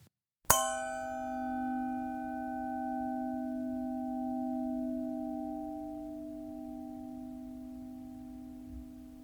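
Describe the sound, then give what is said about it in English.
A bright strike of two lead crystal Bordeaux wine glasses, made by the French manufacturer Baccarat and about 40 years old, rings out, then a pure, sustained tone lingers and slowly fades over several seconds, clear with no voices. “The third and final recording is from two exceptional quality lead crystal Bordeaux glasses made by the French crystal manufacturer Baccarat”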